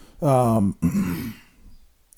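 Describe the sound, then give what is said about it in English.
A single throat clear: a short voiced, falling grunt followed by a rougher, noisy rasp, then quiet. No speech around it. “Here, cough for this one.”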